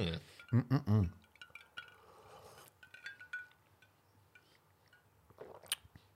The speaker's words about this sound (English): Cheers, mate. Let's try this rum. Let's see if we can taste the lard and bacon.